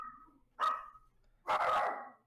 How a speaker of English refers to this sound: Those are the dogs. They can even tell that.